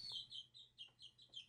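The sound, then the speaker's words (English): Stevie Chicks, a two-week-old pet chick, peeps and chirps in a steady run of high, shrill calls, several short bursts with soft clucking notes underneath and no talking. “Oh, Stevie Chicks is already singing for us.”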